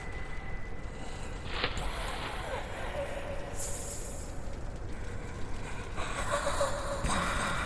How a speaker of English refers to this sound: He heard coarse breathing, then coughing.